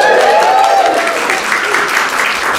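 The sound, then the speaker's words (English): A small live audience claps politely as a guest is introduced, a steady patter of hands, with a brief cheer or whoop rising over the applause near the start. “Polite clapping is helpful.”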